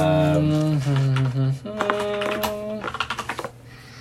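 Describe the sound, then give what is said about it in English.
Rapid keyboard typing, a stream of sharp clicks that quickens into a burst of evenly spaced taps near the end, layered over sustained tonal humming sounds. “Sorry for all the typing noise.”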